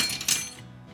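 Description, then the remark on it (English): Dishes and cutlery clink together as they're handled while a large backlog of dirty dishes is being washed, a quick burst of bright metallic and ceramic knocks, fading into a low hum. “Now I have 100,000 dishes to do.”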